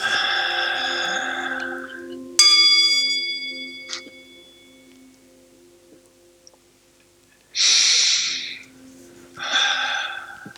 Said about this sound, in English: And you take another deep breath in through your nose and out through your mouth.